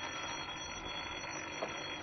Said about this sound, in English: Well, there's the phone now.